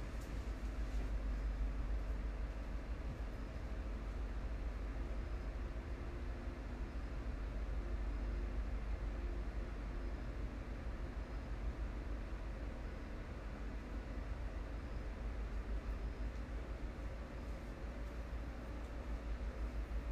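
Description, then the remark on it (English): The loud motor of a truck outside drones on without a break, a steady, heavy engine rumble, deep and loud in the low end with a constant noisy hum above it. “I keep hearing this darn truck outside, like this loud ass motor.”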